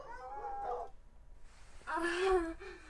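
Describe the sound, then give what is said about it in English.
Dogs barking in two drawn-out, whiny bursts, the second louder and longer, separated by a short quiet gap, with no one speaking. “They're barking.”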